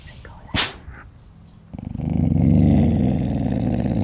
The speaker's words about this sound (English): A couple of hours later, laying in my tent listening to the night sounds, my dog started growling.